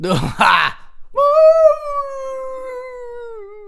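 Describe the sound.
After a brief rough vocal burst, a man's voice imitates a howl into a microphone: one long, steady tone that slowly sags in pitch for a couple of seconds.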